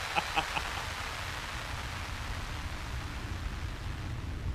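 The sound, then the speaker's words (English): Steady, hissing static from a radio switched on in a car as it drives off fills the whole stretch at a moderate level, opening with a few quick, faint tonal blips before settling into an even, unbroken crackle over a low rumble. “I turn on the radio and I start. Looks like the sound of static drowns out your tears as we drive off.”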